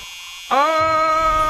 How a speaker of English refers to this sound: Just 10 more seconds. My stall alarm is going off. Keep it level.